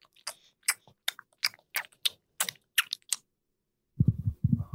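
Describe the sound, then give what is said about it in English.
A voice imitates gum chewing with about a dozen wet, smacking mouth clicks in a quick steady rhythm, fairly loud, then a pause before a low muffled voice sound. “First of all, you do have gum in your mouth, right”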